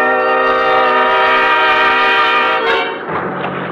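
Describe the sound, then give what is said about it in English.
A loud, steady motor drone with a strong buzzing whine from a 50-horsepower outboard motor pushing a boat at better than 30 miles an hour on a lake at night. It holds for about three seconds, then roughens and shifts lower toward the end. No one speaks. “And the 50-horse outboard skimmed us along at better than 30 miles an hour.”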